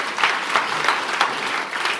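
A room full of people clapping together, a steady, dense patter of applause at moderate loudness that holds for a couple of seconds with no one speaking over it.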